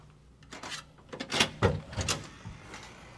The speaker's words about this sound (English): All right. Here's the room. The door slammed shut pretty hard.